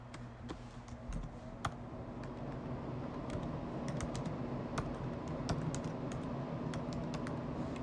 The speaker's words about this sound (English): Hold on, man. Y'all gonna hear me typing.